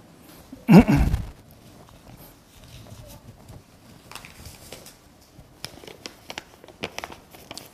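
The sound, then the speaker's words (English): A sheet of paper is handled: one sharp, loud rustle, then a scattering of quieter crinkles and light crackles over several seconds, with no one speaking. “This sheet of paper has the left and the right.”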